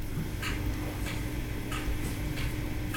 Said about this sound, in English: The clock has so much to say.